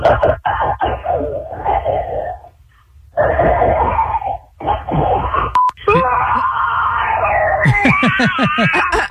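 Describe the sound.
A person's voice imitates a dinosaur roar as a voicemail entry to a dinosaur roar contest: a series of harsh, strained, growling bursts with rising and falling pitch, ending in a long, loud, shrieking screech over a telephone-quality line.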